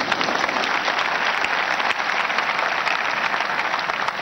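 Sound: audience clapping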